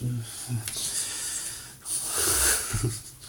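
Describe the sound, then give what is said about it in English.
A loud, drawn-out yawn, breathy and wheezing, stretching over a few seconds and swelling toward the end, with some low vocal tone mixed in. “Like when you yawn, the Prophet sallallahu alayhi wa sallam said, Shaytan is attacking you.”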